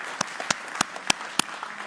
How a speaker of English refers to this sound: And the third round of applause is for all of us who are in church this morning. Well done. Well done.